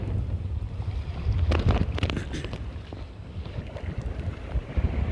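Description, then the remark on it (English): Steady low rumble of a boat motoring through rough ocean swells of 5 or 6 feet along the Nepali coast, with heavy wind buffeting the microphone and bursts of splashing spray around the middle, no voices. “But here's what it looked like, and you'll notice the waves.”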